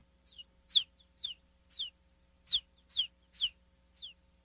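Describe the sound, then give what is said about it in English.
A person vocally imitates a bird, a sound used in beats: a series of about nine short, high, downward-swept chirps, like a small bird or chick, repeating in an uneven rhythm over a low hum. Fairly quiet, with no talking. “But there's certain sounds that, like, for example, this is one that I use like in beats actually, but it's like a It sounds like a bird.”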